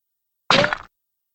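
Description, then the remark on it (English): A single bullet-passing-through-a-body sound effect: one abrupt, wet-sounding impact burst lasting under half a second, with a brief ringing edge before cutting off into silence. “I've heard this one might be the one for a bullet passing through somebody.”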